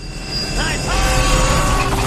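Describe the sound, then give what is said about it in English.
A spinning airplane propeller in a fight scene from a Spielberg Indiana Jones film gives a steady, loud mechanical drone with a low rumble and a sustained whining tone that rises slightly partway through, continuing without a break. “Totally helpless, realize he can't beat this guy, and then looks up, and what is coming his way? Propeller.”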